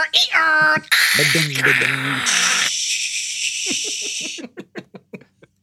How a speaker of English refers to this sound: Speaking of bells and whistles, this is going to make a lot of noise. It makes that horrifying internet sound.